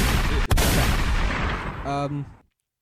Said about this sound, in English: Can we get some gunshots?